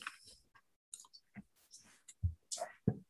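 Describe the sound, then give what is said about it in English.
Black and white dice clatter across a tabletop during a tabletop role-playing game, rolled for strikes against the characters Otham and Meep: a quick, irregular, fairly quiet burst of clicks and knocks, with a couple of heavier thuds as they settle near the end. “Black dice is Otham and White's Meep.”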